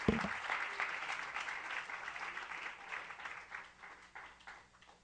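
An audience claps their hands to the Lord in sustained, dense applause, a steady wash of many overlapping claps that gradually thins and softens toward the end.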